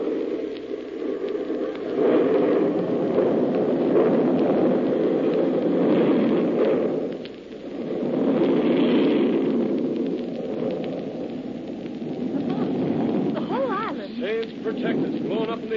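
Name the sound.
bomb explosion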